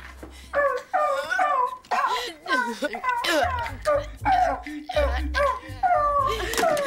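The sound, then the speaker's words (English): A dog yelps and whimpers in pain, its tail pinned under a parked car in a parking area, a rapid, nearly unbroken string of shrill, wavering cries for several seconds. “Your car is parked on a dog. My car is parked on a dog? Yes, ma'am. In the tail area, to be more specific.”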